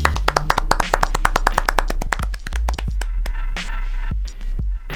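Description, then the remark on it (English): A small group claps in a quick, steady burst of sharp hand claps for a couple of seconds, then the clapping thins out into a few scattered claps over a low rumble. “Let's clap it up for the man.”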